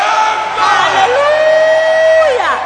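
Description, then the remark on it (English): A crowd lets out a loud, sustained victory shout, many voices cheering and whooping together in one long held cry that swoops downward in pitch as it fades at the end. “I just gave you the shout of victory.”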